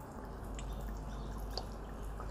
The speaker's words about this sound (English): So I like to submerge all the fruit. I pour enough so they're all submerged.